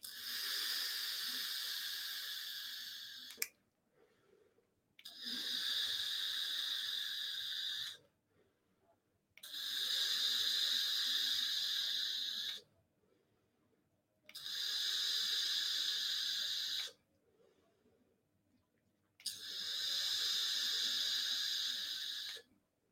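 Five long, steady hissing draws on an electronic vape set to 40 watts, chain vaping, each about three to four seconds, separated by short quiet pauses. The crackly coil hiss is fairly loud, with no talking.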